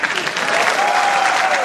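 Sustained applause from a show audience, a dense wash of many hands clapping at steady, fairly loud volume throughout the short stretch, with a faint whistle-like tone running through the middle.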